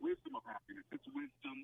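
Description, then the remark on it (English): A caller's radio in Washington, D.C. plays the talk show broadcast back over the phone line, thin, tinny and slightly delayed like an echo, in short choppy bursts of faint speech. “Turn down your radio and talk to me, and we won't have an echo.”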